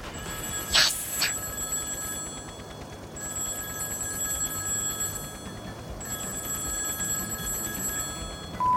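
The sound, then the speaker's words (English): An electronic call tone from a two-way shortwave radio rings out in steady, high pitched bursts that repeat at regular intervals over a constant bed of static hiss, with a brief crackling burst at the start. “Kapow, two-way shortwave radio, please.”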